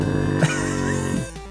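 Two cats growling behind a bookcase, a low, steady, throaty rumble with a buzzing, harmonic edge that holds for about a second before breaking off abruptly. No one speaks.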